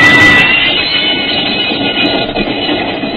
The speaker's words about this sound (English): The train left Chicago and headed north, and then slightly west over Illinois and Wisconsin.